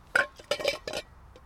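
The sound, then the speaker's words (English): Big ice cubes clink and rattle against a glass in a few quick, bright knocks, fairly loud, with a faint final tap. “Let's see how my big ice cubes have. Moment of truth. Oh, they're quite big.”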